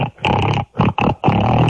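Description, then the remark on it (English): A person imitates a pig, letting out four loud, nasal oinking grunts in quick succession, with short pauses between them and no talking. “Come on, if you're a true pig, you know how to oink. Teach me how to oink.”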